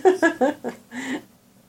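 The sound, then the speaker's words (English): A cat meows in a quick series of three short, pitched chirps, then gives two longer, drawn-out meows, fairly loud with no other sounds around them. “The cat wants to contribute.”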